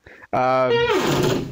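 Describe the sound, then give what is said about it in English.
A loud, drawn-out door creak with a strong, tonal groan whose pitch slides downward over about a second, preceded by a brief, soft rustle. “That was a spooky door.”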